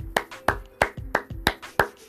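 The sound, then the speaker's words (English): A single person claps their hands seven times in a steady, slightly uneven rhythm, each clap a sharp, bright smack with a quick decay, clapping in praise of basketball coach Eric Spoelstra. No voices are heard. “Let me clap it up for him.”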